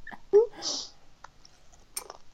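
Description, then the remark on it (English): Crisp, crackly crunching from someone eating potato chips: a loud burst of bites early on, then a few fainter, scattered crunches with short pauses between them. “I was trying to crunch quietly, but it didn't work so well.”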